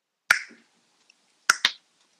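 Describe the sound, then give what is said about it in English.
Sharp mouth clicks imitating finger snaps: one crisp click, then a quick pair just over a second later, fairly loud against near silence. “You're snapping your fingers or something.”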